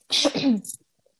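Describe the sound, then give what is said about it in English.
A single loud cough bursts out with a breathy, voiced rasp that trails off after about half a second, followed by a brief soft hiss and then quiet. “Sorry, I need to cough again.”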